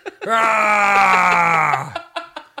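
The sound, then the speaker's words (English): A loud, sustained, exaggerated angry yell held for well over a second, strained and cartoonish, followed by a few short breathy bursts of voice. “Who yells like that? Who yells like cartoon that?”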